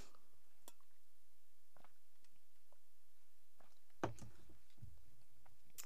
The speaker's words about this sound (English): Just let me sip a little bit of tea.